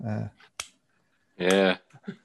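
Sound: pen clicking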